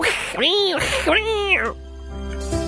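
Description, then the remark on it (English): A person vocally mimics the yowl of the cat next door heard at 2:14 a.m.: two drawn-out, wavering, nasal cries rising and falling in pitch, loud, ending in a short tail. “It was the cat next door. I'm like, oh, it's fighting a possum or something.”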